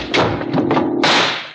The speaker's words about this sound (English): I heard a click. I crashed to the floor, sweeping Mrs. Carver down with me.